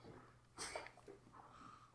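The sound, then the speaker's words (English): A single quick, sharp sniff of Mr. Meeseeks green jalapeno hot sauce, a short breathy inhale of air, followed by quiet noise with no talking. “No, I'm sniffing it.”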